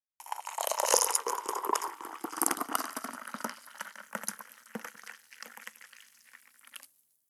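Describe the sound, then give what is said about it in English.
Coffee pours steadily into a cup for several seconds, a bubbling splash that gradually softens and thins before stopping. No voices are heard. “Pour yourself a cup of coffee, and let's talk manifestation.”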